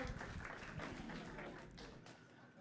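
An audience claps steadily, a dense crackle of many hands that stays even before thinning out and tapering off in the final moments.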